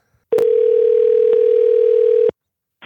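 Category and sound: signal or alarm, phone call ringing tone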